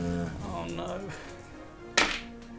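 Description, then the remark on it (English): Dice are rolled once for damage against a farmer, a single sharp rattling clack that fades within a moment, over people talking. “Yeah, go ahead and roll your damage versus the farmer.”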